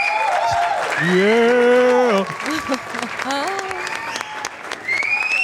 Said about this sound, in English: Applause. Where's the applause? Somewhere. This one. Do we have applause? There we go.